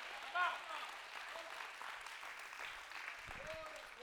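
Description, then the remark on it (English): A church audience claps steadily throughout, giving the Lord a hand clap, in a dense, continuous wash of applause, with a few voices calling out faintly underneath. “Now, y'all don't clap now just because I'm acting crazy.”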